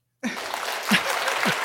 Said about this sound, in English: And I think he deserves a round of applause for that.